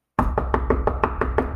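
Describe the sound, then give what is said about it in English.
A quick, steady run of about eight sharp knocks on a door, evenly spaced, with no voices. “Come on in. The door's open.”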